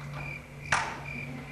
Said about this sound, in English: It's crickets. I'm hearing crickets.